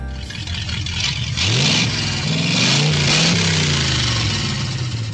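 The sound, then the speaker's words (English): A vintage car with an early fluid-drive automatic transmission idles with a steady rumble, then revs up and accelerates with a rising, droning pitch that holds loud, with no voices present. “So you can, once you're going, you can drive clutchless and you can accelerate from a stop in high gear if you and the people behind you are very patient.”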